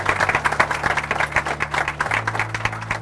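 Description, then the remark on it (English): A crowd applauds the guests of a show steadily for about three seconds, a dense, even patter of many hands, with a low sustained hum of background music underneath. “Please give a warm applause for our guests.”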